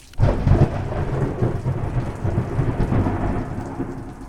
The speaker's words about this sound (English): After the heat of August had passed, the following week drew in September storms to drum the cumulus sky.